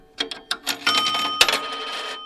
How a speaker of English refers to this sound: He's showing me around the museum, and the first thing we look at is an old payphone. And he shows me what Terry means by listening for the coins. So this is a silver dollar.